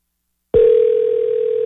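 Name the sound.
telephone dial tone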